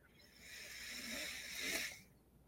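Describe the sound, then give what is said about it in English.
A single slow, airy inhale through the right nostril during alternating nostril breathing, building gradually over about two seconds with a soft hissing rush before fading out, quiet with no talking. “Breathing in through the right nostril.”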